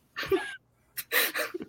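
A gasping intake of breath followed by a sharp, breathy sneeze burst, two noisy hisses within about two seconds, fairly loud and with no talking over them.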